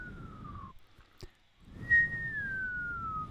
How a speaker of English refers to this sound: I was trying to whistle there. What a nerd, right? My lips are a little bit too dry. So it just came out as like a sort of a sickly wheeze.